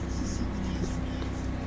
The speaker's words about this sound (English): Why is that plane? Oh, crop duster.